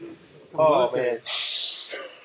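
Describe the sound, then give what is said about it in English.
A voice imitates loud, exaggerated sniffing of someone's hair: a harsh snorting inhale followed by a long, breathy hissing draw of air. “He's gonna be all sniffing your hair and shit.”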